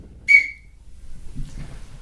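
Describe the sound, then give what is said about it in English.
A person gives one short, sharp, high whistle near the start, loud, followed by faint low rumbling background noise with no talking. “Why did you whistle then?”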